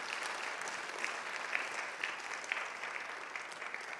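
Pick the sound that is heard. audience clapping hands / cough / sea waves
audience clapping hands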